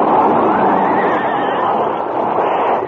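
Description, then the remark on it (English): A wounded stagecoach lead horse, shot by bullets, lets out a loud, drawn-out whinny with a shaky, wavering pitch, continuous for about three seconds over a rough, noisy rumble as it falls, the other horses pile up and the stagecoach overturns. “As the wounded animal fell, the other horses piled up, and the stagecoach careening turned over.”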